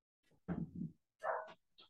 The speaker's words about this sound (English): Hang on a minute. I've just got to get the dog in because he's barking.